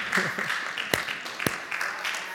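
A room full of people at Villa's Grace applauding a man, a steady wash of clapping with a few sharper claps standing out, and faint voices mixed in underneath.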